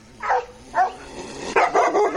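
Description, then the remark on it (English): A sound effect of a small terrier barking: two sharp, separate barks followed by a quicker flurry of yappy barks, loud, with no talking. “playing these dog sound effects”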